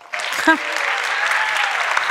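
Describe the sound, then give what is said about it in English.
A crowd breaks into steady applause to welcome a youth pastor: a dense wash of many overlapping claps sustained at an even loudness, with a brief voice-like tone poking through near the start. “I'm not waiting for the applause.”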